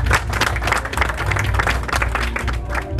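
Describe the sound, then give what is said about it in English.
A church audience breaks into dense, sustained applause for Jesus, many hands clapping together in a steady loud wash, with a low rhythmic bass rumble running underneath the whole time. “If there is nobody, clap for Jesus one more time.”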